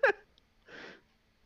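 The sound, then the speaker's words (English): Someone draws a quick breath from a vape: a short voiced catch, a brief pause, then a soft, steady airy hiss lasting about a third of a second. No one talks. “A certain breathing apparatus. Ah, the vape.”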